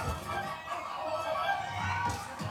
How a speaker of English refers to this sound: Oh, okay. Chicken death.